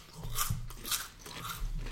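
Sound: crunching potato chips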